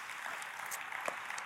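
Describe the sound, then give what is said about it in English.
Steady audience applause, a dense wash of many hands clapping with no break, fairly quiet and even throughout, with a few sharper individual claps standing out. “Why don't we give Anne-Marie a round of applause?”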